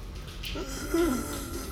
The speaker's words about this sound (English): …'s sleeping, slumped over, wheezing snores like a cat's.